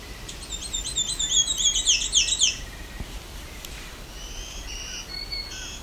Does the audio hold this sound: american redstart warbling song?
yes